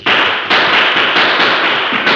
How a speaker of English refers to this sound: Three guns screamed bullets and 2 men fell.